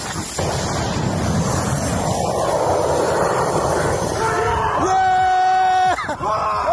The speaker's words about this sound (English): That's Ukrainians celebrating the shooting down of drones, but explosions have been rocking Kyiv as Russia fires more than 120 missiles at Ukraine.